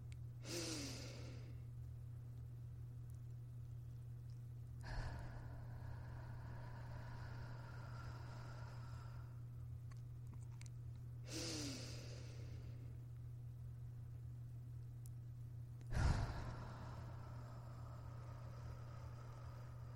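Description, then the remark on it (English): Slow, deep breaths drawn in and let out in a steady rhythm, several people breathing together in a led, synchronized breathing event, each long inhale and exhale repeating every few seconds over a low constant hum. “And now allow us to lead breathing in a synchronized event.”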